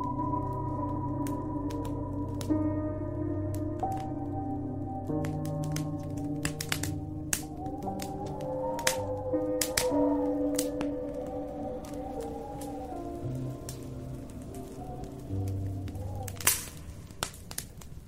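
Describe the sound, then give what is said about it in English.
A beechwood fire in an antique fieldstone fireplace in a cottage crackles and snaps with irregular sharp pops, some louder than others, over a steady low, humming tonal background. No one speaks. “I love the sound of a beechwood fire. The way the wood crackles and snaps seems to get amplified by the design of the antique fireplace that is the centerpiece of my cottage.”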